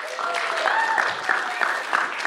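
An audience claps for a woman coming up to share her testimony with the community, a steady, dense patter of many hands, moderately loud throughout, with a few voices faintly mixed into the applause.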